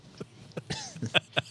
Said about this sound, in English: I bet whatever you just coughed up was yellow.